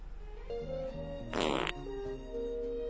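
A single loud, raspy fart sounds midway through, lasting under half a second, set against steady background music with sustained tones.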